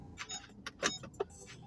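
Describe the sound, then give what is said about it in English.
Keys jangle and clink in a few quick metallic bursts as a car is being parked, with soft clicks and handling noises over a faint low rumble. “Gotta park this car.”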